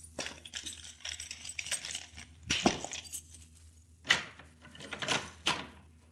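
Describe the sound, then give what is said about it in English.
Metallic jingling and clinking of keys, followed by a few sharp clicks and a thud as a locked door is unlocked with keys and pushed open, with no talking. “Yeah, this door is locked. I have keys that may unlock it.”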